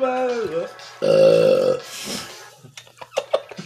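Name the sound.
burp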